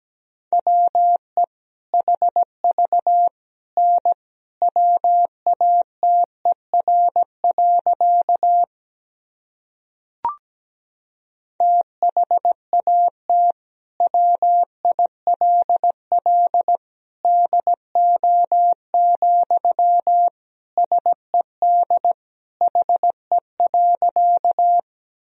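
A steady single-pitched beep keys on and off in quick dots and dashes, Morse code sent at 17 words per minute, spelling out sentences built from the top 100 words and abbreviations, pausing briefly with a faint click before resuming for the rest.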